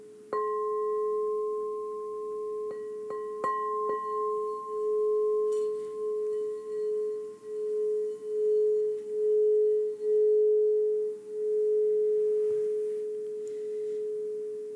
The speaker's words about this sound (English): And as I ring the bell, just on your own time, bringing your awareness back into the room. No rush.